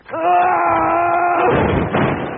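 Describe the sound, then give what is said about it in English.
A loud, steady wailing tone holds for over a second, then breaks into a noisy clattering crash as someone trips and knocks over a bongo drum, rumbling on for about a second. “You knocked over my bongo.”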